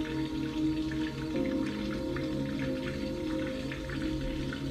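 Soft, steady rain patters in scattered drops over a calm, sustained ambient Zen music drone with low humming tones, moderately quiet and continuous, with no voices.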